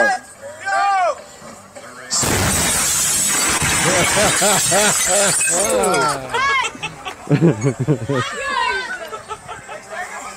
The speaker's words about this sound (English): Wait a minute. So, like, the explosion noise broke all the windows? Yeah, the shockwave of the was so loud.